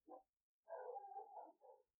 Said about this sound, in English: That's not your dog. No, those are the dogs next door.